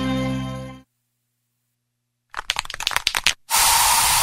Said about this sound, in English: So you just used bug spray in your home.